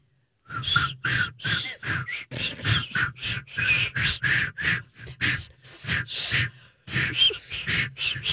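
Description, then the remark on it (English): Someone tries to whistle a tune but mostly produces breathy, airy puffs, a rapid string of about a dozen short blows with only faint traces of pitch, fairly loud. “I feel like I'm just breathing air.”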